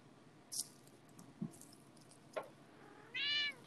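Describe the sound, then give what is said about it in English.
A female cat in heat lets out a drawn-out, wavering meow near the end, after a few faint clicks and soft shuffling noises in otherwise quiet surroundings. “Did you listen to my cat? She was meowing the entire time.”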